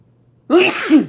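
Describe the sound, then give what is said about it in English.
A single sharp sneeze bursts out after a moment of silence, fairly loud, with a breathy, voiced tail and no talking around it. “Bless you. Bless you.”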